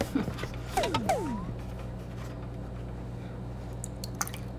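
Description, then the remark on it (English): Milk pours briefly into a bowl of eggs with a wet, squishy splash, followed by a few soft drips against a low steady background hum, fairly quiet. “You can really hear the drip, the pouring too.”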